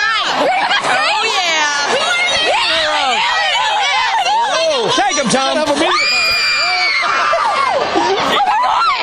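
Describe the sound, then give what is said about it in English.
A group of girls from Brentwood scream together in a festival crowd in high, overlapping shrieks and whoops, loud and sustained throughout, with the rising and falling pitches of many voices blending into a crowd din. “But that was fun watching y'all scream.”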